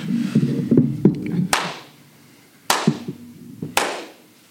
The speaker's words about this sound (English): All right, three claps, action.